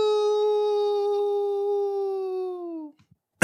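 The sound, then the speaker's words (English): A person imitates a wolf howl, one long sustained wavering tone held for about three seconds before fading out, loud, followed by a brief pause and a sharp burst of noise. “Anyway, y'all know that I love talking about wolf conservation in my zoo news segments, and I have four wolf conservation stories for you this week, so I thought I'd howl at the beginning.”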